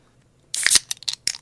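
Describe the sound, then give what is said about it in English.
A drink can cracks open with a sharp snap and a loud hissing spray, followed by a few shorter fizzing, crackly bursts. No one speaks. “You want to crack this open in the name of waiters?”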